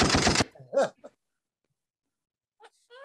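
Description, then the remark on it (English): A loud, harsh burst of sound-effect gunfire played from a soundboard opens, lasting under half a second, followed by brief quiet vocal noises and near silence. “Yo, we should have never gave you that soundboard, man. I know I got some gunshots coming in later episodes.”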